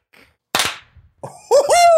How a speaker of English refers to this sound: Hell yeah, baby. We're back. Finally did it. Call me …, because that clap was in sync.